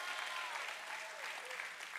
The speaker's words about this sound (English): Oh, I need 100 people to clap who's thankful to Jesus. Come on.